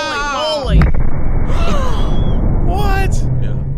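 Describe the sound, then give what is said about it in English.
A sudden, loud Tannerite explosion, set off by a shot, blows apart a wedding dress. It bursts in after a brief voice, followed by a sustained roaring rumble while people gasp and exclaim over the noise. “There are probably little shreds of wedding dress raining down”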